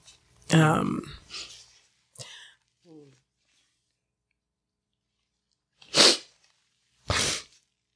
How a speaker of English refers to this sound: I'm going to cry on both, so this is fine. So you're going to hear me sniffling.